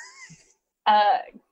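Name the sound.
person imitating snoring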